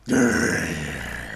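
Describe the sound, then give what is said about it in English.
A deep, raspy growl voiced by a person, starting abruptly and holding steady for over a second with a rough, rumbling texture and no words. “It made a growling noise.”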